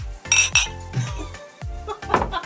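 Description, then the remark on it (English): Glasses clink together in a toast, a couple of bright ringing chimes, followed by a softer clink, with faint voices murmuring underneath. “Cheers. Cheers.”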